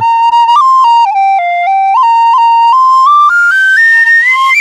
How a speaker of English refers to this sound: And then you get the higher whistles and or even go for broke. Let's pick one that's even higher. Yeah, but, oh, the little one.